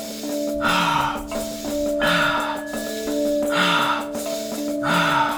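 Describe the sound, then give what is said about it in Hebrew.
Quick, forceful breaths pushed in and out in a steady rhythm at double pace during a guided breathing exercise, loud, over a soft sustained musical drone with no talking. “וקצב כפול, יפה מאוד. לא לוותר על אף נשימה, ללכת עד הסוף, יפה מאוד.”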